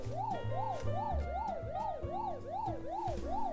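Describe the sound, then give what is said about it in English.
A loud buzzer sound effect with a rapid up-and-down warbling tone, like a yelp siren, repeating about nine times over a throbbing low pulse, with no talking. “That's the buzzer.”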